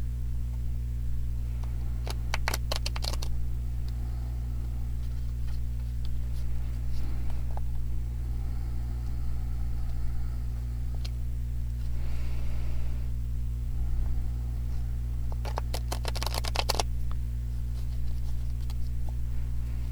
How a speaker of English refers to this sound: So I'm going to shuffle the cards and do a little silent prayer.